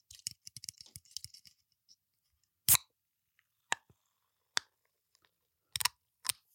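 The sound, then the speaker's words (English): A can of sparkling water cracks open with a sharp hiss for a drink, surrounded by faint fizzy crackles and a few crisp clicks and small wet sounds, with no talking. “Can of water, sparkling water.”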